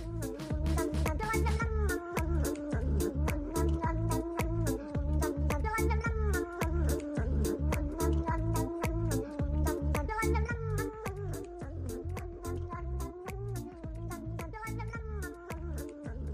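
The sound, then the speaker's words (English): Cat meows ride over a loud, steady dance beat, the high wavering mews repeating in a sung, melodic pattern against thumping drums and bass throughout. “Oh shit, we got the Delta Cat now!”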